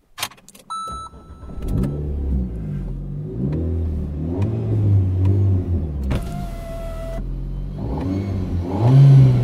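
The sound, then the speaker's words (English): An Alpine car's engine cranks and catches after a short whir in the Vale of Clwyd, then settles into a low rumble with rising and falling revs, a brief higher whine cutting in partway through; no one speaks. “Okay, let's have a listen to the car. Let's start her up.”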